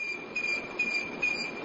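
An alarm sounds with a steady high-pitched electronic tone that pulses in regular repeating bursts, moderately loud, with no one talking.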